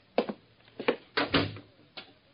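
An apartment door is pushed shut, producing a short series of wooden clunks and rattles as the latch catches, with a final softer knock at the end. No voices.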